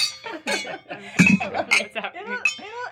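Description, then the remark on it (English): Wine glasses clink together a few times in a toast, bright short pings scattered over about three seconds, mixed in with people talking and a bit of laughter. “Okay, so quick cheers.”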